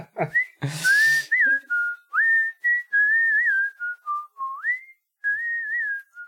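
someone whistling a tune

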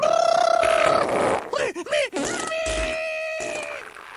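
fart sound effect

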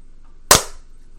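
single hand clap

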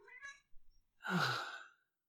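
cat meowing

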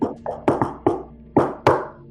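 knocking on a door

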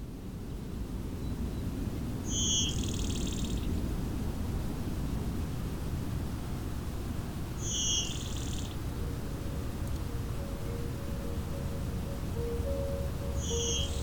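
blue-winged warbler bee-buzz song

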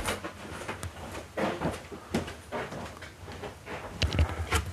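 coughing

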